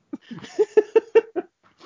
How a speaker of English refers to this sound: There's the dog barking, too.